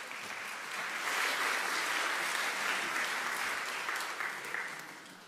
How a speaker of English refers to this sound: Just give me a little clap. It's nice. Just clap in.